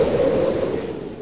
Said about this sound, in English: Yes, this is what an actual tornado sounds like.